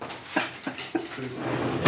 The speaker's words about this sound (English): So just close that door.